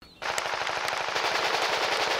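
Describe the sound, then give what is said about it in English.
Loud, sustained automatic gunfire from a first-person shooter video game, rapid evenly spaced shots firing continuously for about two seconds after a brief quiet start, with no talking. “Eating snacks and playing first-person shooters with your bros.”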